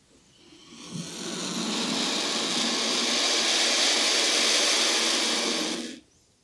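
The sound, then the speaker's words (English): A turkey vulture lets out one long, harsh, breathy hiss that swells in quickly, holds steady and loud for about five seconds, then cuts off abruptly. No voices are heard. “Vultures lack a syrinx, or a bird voice box, so they're silent most of the time. However, they do have the ability to grunt and hiss.”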